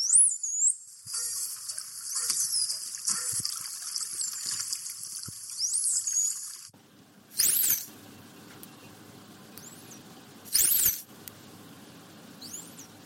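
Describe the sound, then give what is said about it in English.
Shrill, sweeping animal signature whistles, rising and bending in pitch, heard over a steady watery hiss. A first run of whistles is followed after a pause by a couple of brief, sharper bursts. “And you sent us a few of those signature whistles over. We'll have a listen to those now.”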